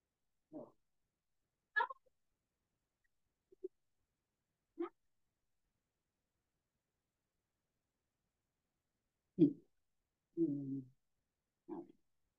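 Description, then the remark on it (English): A female pet cat gives a series of short, chirpy meows and squeaks, spaced irregularly with quiet gaps between, fairly soft, with no one talking. “I told you my cat is my baby. She really acts like a human baby.”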